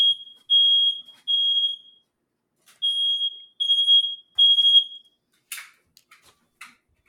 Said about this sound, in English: Oh, that worked. Did you just take the smoke detector out? It's not even like smoky, so I don't know what's going on. I mean, it detected whatever it was. Carbon monoxide or something. That's too sensitive.